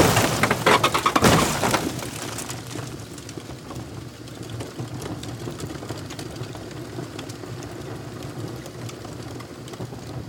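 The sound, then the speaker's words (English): A food truck crashes down onto police cars on a highway with a loud burst of crunching metal and shattering glass, then settles into a steady low rumble for several seconds. No one speaks. “the food truck comes crashing back down onto the cop cars in the highway.”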